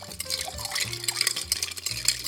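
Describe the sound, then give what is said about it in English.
A martini being stirred over ice, with a steady run of quick, bright clinks and rattles against the glass over a low, continuous hum in the background. “One of the things I learned from all the bartenders on the show is to stir your cocktails and really let some of the ice melt, let the flavors blend together.”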